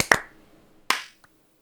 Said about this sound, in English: clap sync. 3, 2, 1.